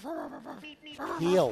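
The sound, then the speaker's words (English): A dog, Moxie, barks and yowls in two loud, drawn-out bursts separated by a brief pause, with a strained, almost talking-like pitch that rises and falls. “But I think we're going to have the dog owner on, because if we talk to the dog, it's going to be a one-sided conversation.”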